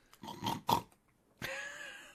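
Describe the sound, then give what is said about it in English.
A person imitates a pig's snorting: two quick, rough nasal snorts close together, then a longer voiced grunt. Fairly loud, with no other sounds. “Snort, snort.”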